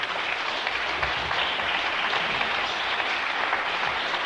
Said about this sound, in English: Here she is. Give her a clap.